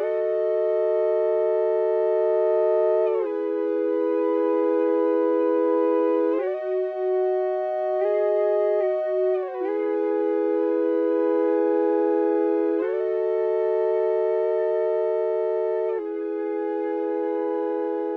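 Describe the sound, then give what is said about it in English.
Electric guitar played with an ebow: smooth, endlessly sustained bowed-sounding notes with no picked attack, shifting between pitches every few seconds at a steady, fairly loud level, with no talking. “electric guitar played by an ebow”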